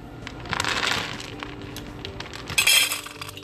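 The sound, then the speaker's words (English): A dog food dispenser drops kibble into a bowl: a steady patter of small hard clinks and rattles, swelling into a brief louder clatter near the end, with no voices. “So the dog food generator is now on, and behold, the dog food generation process.”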